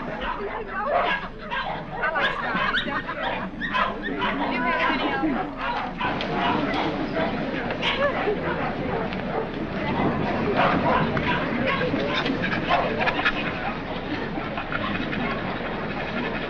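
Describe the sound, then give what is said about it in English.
A loud, chaotic din of many dogs barking at once at a dog show, their yaps and woofs overlapping continuously with no pause, with a murmur of voices mixed into the racket. “I can stand one dog, but this bedlam is getting on my nerves.”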